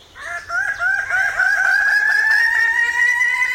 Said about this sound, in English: It's early morning on the island of New Guinea. The lowland forest erupts with the crowing calls of male Ragiana birds of paradise.